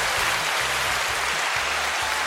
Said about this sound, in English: That's right. That's the applause button. We're here recording with the new Zoom PodTrack P8, and it's got a bunch of little buttons here.